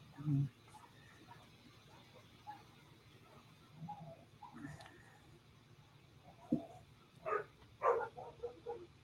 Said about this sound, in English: Why are all dogs going off right now, bro? God told him to bark.